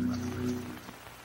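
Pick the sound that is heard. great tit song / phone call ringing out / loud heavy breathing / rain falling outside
rain falling outside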